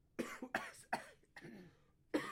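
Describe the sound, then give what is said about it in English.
A run of five sharp coughs, the first three coming in quick succession, then a short pause before a fourth and a final louder cough after a longer gap. “You just cough, USA.”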